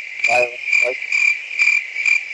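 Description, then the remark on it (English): A cricket sound effect: a steady, shrill cricket chirp runs throughout, with a few low, throaty croaks popping in near the start, like a nighttime pond ambience. No voices. “I didn't know the crickets were going to pop up in the middle of me giving a song time.”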